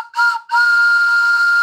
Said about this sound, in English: Let me get my whistle out.